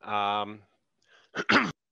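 A brief vocal sound opens, followed after a short pause by a quick, harsh double cough, fairly loud, then silence.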